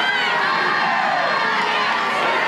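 baseball stadium crowd cheering

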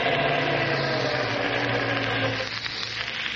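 truck engine idling

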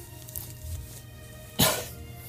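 coughing

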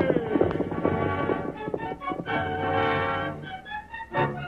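horses galloping away

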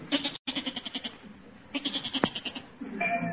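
goat bleating

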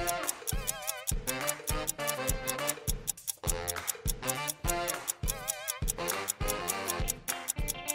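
clock ticking countdown

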